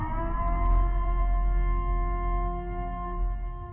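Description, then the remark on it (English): A loud civil defense siren holds a steady, sustained wail with a rich, buzzing harmonic drone, sounding continuously for a few seconds with no voices. “Commencing at the siren, there will be no holds barred.”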